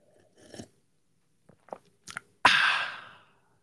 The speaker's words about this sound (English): Sip of the day. There it is. There it is. We got the sip of the day. I enjoyed it. I hope you enjoyed it too.